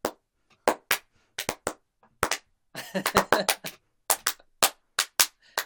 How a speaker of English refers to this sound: But now you are to ritually bind the terms with the clapping of hands by the two heads of household.